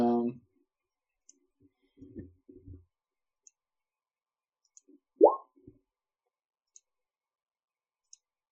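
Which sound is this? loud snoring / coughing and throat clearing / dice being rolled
dice being rolled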